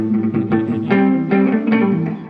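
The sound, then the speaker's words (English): An electric guitar being tuned up on 11 Mile Sessions Live before the final track, with loud, distorted sustained notes struck a few times in a row and bending slightly in pitch. No one speaks. “I know you guys aren't doing those 2 and 3 minute songs, so we'll let the master there tune up a little bit before we finish up.”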